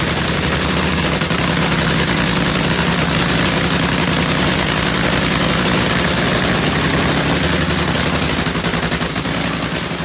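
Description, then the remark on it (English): A nitro funny car engine, burning nitromethane, idles at warm-up for NHRA drag racing, a loud, rapid, crackling rumble that pops like gunfire and holds steady for the whole stretch, with no voices. “Sound that is the sound of a nitro funny car warm up.”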